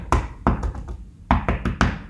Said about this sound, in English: You literally just knocked on next door's house.